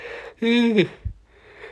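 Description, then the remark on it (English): A breathy human yawn with a drawn-out voiced groan that slides downward in pitch, followed by a soft exhale and a brief low thump. “Maybe that's what all those pauses are, me yawning.”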